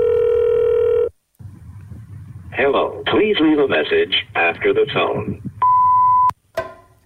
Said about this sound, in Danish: Vi kan lige prøve at ringe hende op og høre.